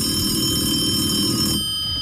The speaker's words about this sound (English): Okay. Hold on. The phone's ringing.